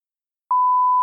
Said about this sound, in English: Meowdy folks, PM could not help but spoil a Chainsaw Man thing, so just skip ahead 5 to 10 seconds after the beep.